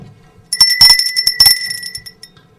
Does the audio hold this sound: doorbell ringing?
yes